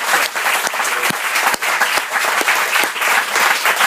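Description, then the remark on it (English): A crowd applauds steadily at an evening gathering to thank a man, many hands clapping together in a dense, continuous patter with a few sharper individual claps standing out, loud and sustained throughout with no one speaking. “We don't usually do the clap for people thing, but can we just tell him we're thankful for him?”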